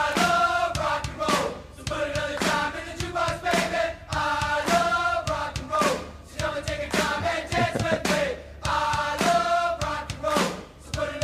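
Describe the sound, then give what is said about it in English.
A loud, driving Christian punk rock song with a steady beat punctuated by sharp, rhythmic hand claps, distorted guitars and shouted group-style vocals filling the mix throughout. “How can you not like it? The hand claps.”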